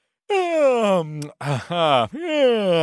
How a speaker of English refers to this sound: Oh man, stop yawning. You're gonna make us yawn. Yeah. Yeah. Oh, you're making it so sleepy in here.